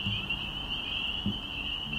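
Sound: spring peeper frogs calling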